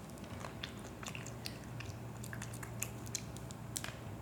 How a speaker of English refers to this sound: Is this good broccoli that you got going on? You're munching. Is it better than the last broccoli?